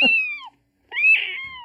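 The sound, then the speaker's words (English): A person imitating a cat makes two drawn-out, cat-like meows, fairly loud and separated by a brief silence; the second wail rises and then trails off in a long, whiny tone. “You know, this sounds like you making cat noises.”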